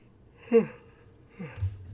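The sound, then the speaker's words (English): A fairly quiet yawn from a tired parent just after lying down for nap time with a toddler: a breathy intake swelling into a voiced tone that slides downward, then a second softer, drawn-out exhale sinking low, with no words spoken. “And aside, any parents out there, I'm yawning a lot.”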